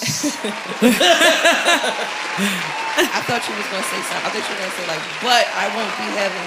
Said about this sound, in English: I'll give you this a long-ass applause. Oh, gosh.